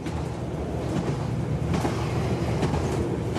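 A train rumbles steadily along the tracks past green fields, a continuous loud low roar with faint rhythmic clacks of wheels over rail joints, with no voices.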